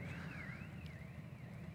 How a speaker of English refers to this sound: Sounds like there's an alarm going on outside. Amen. Don't worry, the guys will attend to that quickly.